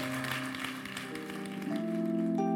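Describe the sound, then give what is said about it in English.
An audience at Life Worship Center claps their hands in a steady, dense patter to give glory to God, blended with sustained organ or keyboard chords that hold and shift throughout. “Clap your hands and give him glory in the room.”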